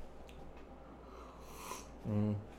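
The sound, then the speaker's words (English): A single airy, hissing slurp of a drink, taken about a foot from the microphone, lasts about half a second, followed by a brief low voiced sound like an exhaled 'ahh' against a faint background hum. “Maybe I just sip too loudly and I'm an asshole, but whatever.”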